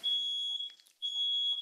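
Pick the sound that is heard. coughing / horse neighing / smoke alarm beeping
smoke alarm beeping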